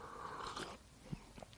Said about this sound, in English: As I sit here and I sip my coffee real quick.